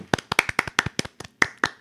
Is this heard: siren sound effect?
no